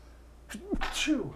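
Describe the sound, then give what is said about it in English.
A single human sneeze: a quick breathy intake followed by a sharp, explosive burst of air, loud and alone against a quiet background. “And I might sneeze.”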